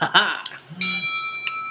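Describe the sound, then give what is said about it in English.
A voice speaks briefly, then a phone notification chime for a Twitter update rings out, a bright electronic tone with steady high partials that sustains for about a second, with a small accent near the end. “And your phone goes off.”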